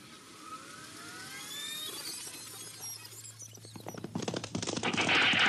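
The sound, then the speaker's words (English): A burst of gunfire from an old radio western: sharp cracks come faster and louder toward the end, after thin whistling tones and a low steady drone open the scene. “Hey, you shot my horse.”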